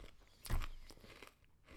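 food or drink, chewing crunchy food

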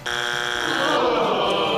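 signal or alarm, quiz game buzzer

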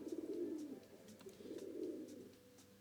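bird, pigeon cooing

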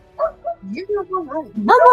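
animal, dogs barking

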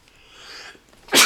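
human body sound, sneeze

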